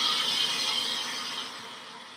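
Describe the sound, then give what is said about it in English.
A bombardier beetle's chemical spray, deadly chemicals mixed in a special chamber reacting and exploding at boiling point from its rear end: a steady, bright hissing burst that holds for about two seconds, then slowly fades, with no voices over it. From the BBC film Alien Empire. “They react and explode at boiling point from its rear end in an awesome chemical weapon.”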